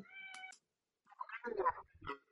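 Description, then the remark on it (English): A cat at home meows twice as it is about to be let out: a short, steady cry, a brief pause, then a longer, wavering meow. Both are fairly quiet and clear, with no one talking. “I'm just going to pause and let the cat out.”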